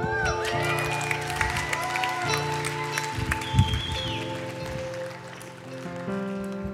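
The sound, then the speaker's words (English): A church audience breaks into a loud, sustained round of applause as offering baskets are about to be passed, dense clapping throughout with scattered whoops and voices, while steady musical tones hold underneath. “we're going to pass the baskets and practice generosity together, everyone just gives like a absolutely ridiculous like round of applause.”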